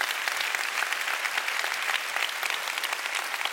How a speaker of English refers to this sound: Oh, you want to clap? Come on, let's give the Lord a big clap. Hallelujah.